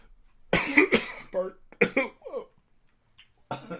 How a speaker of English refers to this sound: Cough attack.